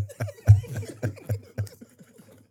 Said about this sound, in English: Cough a lot.